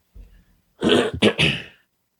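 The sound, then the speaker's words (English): A soft low rumble, then a loud burst of three rough coughs in quick succession, harsh and breathy, from a person with bad allergies, followed by silence. “That'll just make me cough because I got the allergies are really bad.”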